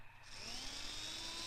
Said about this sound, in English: Yep, he's drilling through the lock with his umbrella. It's a very, very well-produced pose from the puppet there as he's pressing the drill against the lock.